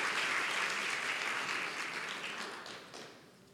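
audience applauding loudly

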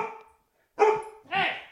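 dogs barking

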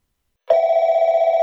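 telephone ringing

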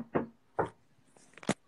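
knocking on a door

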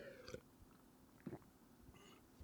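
sipping water

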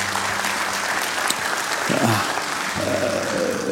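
audience applauding

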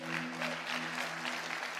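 audience clapping

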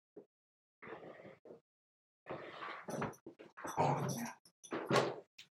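dog making noises

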